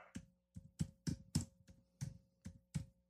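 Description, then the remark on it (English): A run of about ten sharp keyboard taps arrives in an uneven, hesitant rhythm, each click crisp and bright, with short pauses between bursts and no voices over them. “Me and my dyslexic ass typing right now.”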